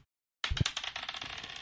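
Dice are rolled onto a hard tabletop during a tabletop game after a brief silence, a sharp burst of bright clicks followed by a rapid, fading rattle as they tumble and settle. No voices.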